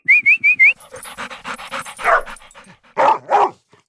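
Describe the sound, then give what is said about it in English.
A dog gives a few short high whines, then pants rapidly and lets out three sharp barks near the end, fairly loud, with no one talking. “can you give us like a little woof woof?”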